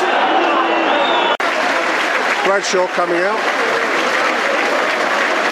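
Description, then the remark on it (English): A large football stadium crowd roars and applauds continuously during a match against Palace, a loud, dense wash of cheering that fills the whole clip, with a man's voice briefly speaking over it partway through. “Brings the crowd into the game.”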